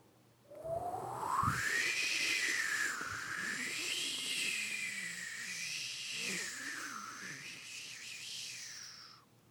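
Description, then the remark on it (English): A cold ocean breeze effect: a steady, whistling wind tone that swoops up and wavers up and down in pitch for several seconds, with a low rumble beneath and no talking. “That were the breeze.”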